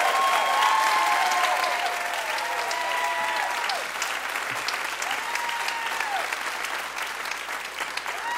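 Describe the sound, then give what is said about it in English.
Sustained audience applause for a singer, a dense steady roar of many hands clapping at a consistent loud level throughout, with a few faint whistles and cheers rising above it. “Good clapping. Major clappage.”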